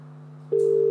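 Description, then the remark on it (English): A steady electronic ringing tone of an outgoing phone call comes in halfway through, loud, held as one continuous beep over a faint low hum, with no voices. “You're calling. It's your phone.”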